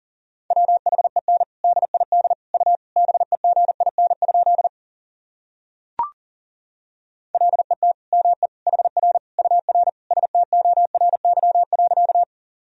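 Rapid Morse code at about 40 words per minute sending practice sentences built from the top 300 words and abbreviations: a steady mid-pitched tone keyed into quick dots and dashes, with a pause and a brief click in the middle before the sending resumes.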